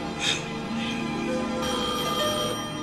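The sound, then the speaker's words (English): A telephone rings in two bright, trilling bursts, steady in loudness, with a continuous low hum running underneath. “Answer that phone.”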